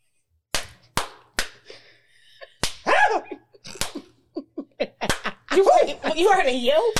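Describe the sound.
Several sharp, loud smacking slaps, imitated by a person recreating someone being smacked on the buttocks, land at uneven intervals, with voiced yelps and mouth noises mixed in between and a flurry of vocal sounds toward the end.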